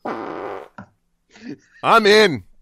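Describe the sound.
A voice imitates a reverse fart: a long buzzing raspberry, a short blip, then a rising, swelling vocal noise like something inflating. Fairly loud, with no other talking.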